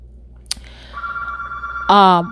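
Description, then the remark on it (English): A mobile phone rings: after a short click, a steady electronic tone sounds, then a louder, buzzier ringtone chime swells in near the end, with faint background noise underneath. “Oh, Sorry, guys, my phone.”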